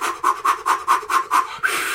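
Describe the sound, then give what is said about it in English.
Rapid, forceful Wim Hof style breathing done on purpose: about seven quick, evenly spaced huffs, loud, followed by one longer, rushing breath. No talking. “I'm Wim Hof here, breathing.”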